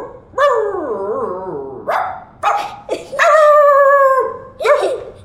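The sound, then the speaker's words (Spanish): A person imitates a dog with a series of loud, drawn-out barks and howl-like yelps, about five vocal bursts with brief gaps. “A un perro, a imitarle a un perro.”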